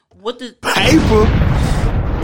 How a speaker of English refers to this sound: No, we're going to retract that explosion. No. Okay, why? Because. Why you got to track my explosion?